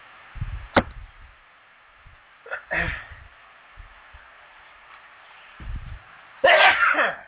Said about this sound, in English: Uh-oh, got to sneeze.